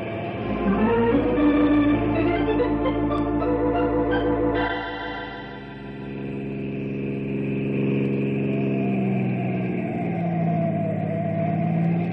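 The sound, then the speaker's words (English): A car engine revs hard and roars steadily as the driver tries to shake a pursuing patrol car, its pitch shifting as it accelerates and the gears change, loud throughout with no talking. “That patrol car's following me. But I'm gonna shake him and get away.”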